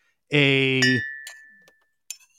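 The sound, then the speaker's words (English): An empty drinking glass clinks once with a bright, ringing tone that hangs and slowly fades, followed by a few faint taps as it is handled. “This must have been some kind of glass, which I don't remember what was in here.”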